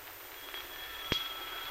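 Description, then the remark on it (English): A doorbell rings steadily with a thin, sustained metallic tone, fairly faint, and a single sharp click cuts in partway through. No one speaks. “Doorbell's ringing.”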